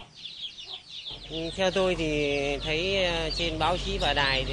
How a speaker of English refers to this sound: But farmers like this one are happy to line up with their bamboo baskets full of chickens.